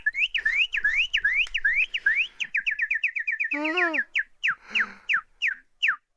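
Loud, shrill human whistling, close up: a fast run of repeated rising sweeps, then a string of quick chirpy downward notes, like a siren or birdcall imitation.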